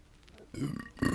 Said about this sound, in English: This is fucking disgusting. This is just you burping into my ear holes right now. It's nice. It's really close.